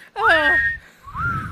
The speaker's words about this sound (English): And the whistling? Yes.